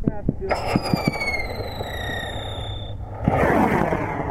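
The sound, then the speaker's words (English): A firework whistles and shrieks for a few seconds over scattered sharp pops, then a louder crackling burst fills the end, loud. “That's a firework.”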